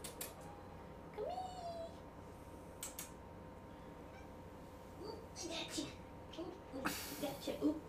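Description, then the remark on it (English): A cat gives a short meow early on as it is picked up and held awkwardly, followed by rustling and handling noises, with people talking quietly in the background. “Awkward way to hold a cat.”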